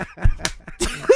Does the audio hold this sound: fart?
no